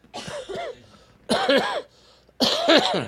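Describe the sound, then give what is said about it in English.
Three separate coughs, fairly loud, each a harsh burst with a raspy, voiced tail, separated by short pauses. No talking around them. “So that's the only thing, the other thing that I didn't know that was associated with the flu was a cough.”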